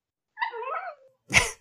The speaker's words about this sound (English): Oh, boy, you were just asleep a second ago. Is that the new puppy? That would be the puppy.